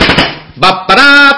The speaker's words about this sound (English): That's my firecrackers going off for the new year.